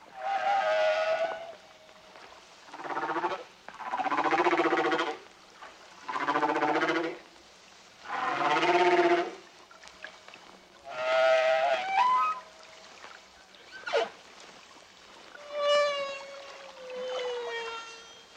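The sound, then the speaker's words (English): A Hawaiian humpback whale in shallow water sings a sequence of long, tonal moans, rising cries and sweeping whoops, each phrase separated by short pauses, with little echo and no voices. “This is a Hawaiian humpback song.”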